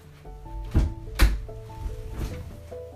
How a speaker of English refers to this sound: Hold on, I'm just going to shut the door.